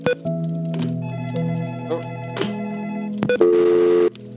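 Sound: telephone dialing tones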